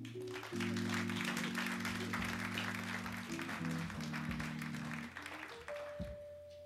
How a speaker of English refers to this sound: Let's give another round of applause for the ….